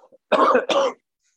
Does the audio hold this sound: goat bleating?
no